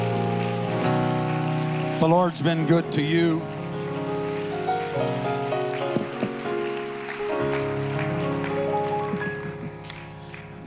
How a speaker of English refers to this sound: I wonder if we could really give the Lord a good hand clap of praise. Let's give him a hand clap of thanksgiving.